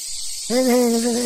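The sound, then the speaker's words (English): A steady, high-pitched chorus of periodical cicadas, newly emerged after 17 years in the ground, drones throughout, and about halfway in a lower, sustained buzzing tone joins it and holds to the end. “So we came up with, I wonder what cicadas are thinking after being in the ground for 17 years.”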